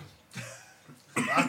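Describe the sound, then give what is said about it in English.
A breathy intake of air, then after a short pause a harsh burst of coughing, loud and raspy, with no talking. “I don't want to cry and cough.”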